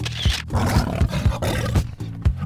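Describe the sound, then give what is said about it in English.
A person imitates a tiger's roar: a loud, gravelly growl sustained for a couple of seconds with rough pulsing bursts, and no talking. “Now you're a tiger. Show me. You're a tiger clawing the camera. Show it to me. Roar.”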